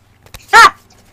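A single short, high-pitched yelp from a dog bursts out loud, like an excited puppy, with a faint tap just before it and near silence around it.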